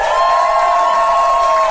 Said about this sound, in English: Now, ladies and gentlemen, now give us a round of applause if you've ever heard Do Go On the show before.